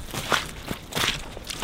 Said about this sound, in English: It's a cold, windy, rainy day. I'd love to be cozied up by the fire inside, sipping hot cocoa. But instead, I'm walking through the mud at my off-grid homestead, Sunny Mountain. Doesn't feel very sunny today.